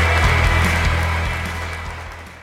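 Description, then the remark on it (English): A steady wash of audience applause with scattered sharper claps, fairly loud, fading a little toward the end, with no voices over it. “A big round of applause.”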